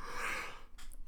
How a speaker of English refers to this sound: Sleepy panda. Yawned on a podcast. That's good radio. Not editing it out.